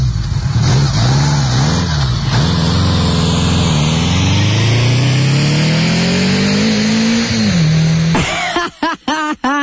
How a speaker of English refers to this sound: It sounds pretty darn close. Actually, that would be a Honda Goldwing.